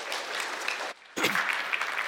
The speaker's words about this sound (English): How about a round of applause to welcome here to our church family?